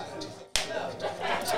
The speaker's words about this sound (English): Oh, you really clap? I do. Oh, okay. It's so I can know where to cut.